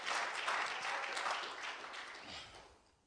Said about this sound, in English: I think that we ought to give God a hand clap of praise on that. Hallelujah.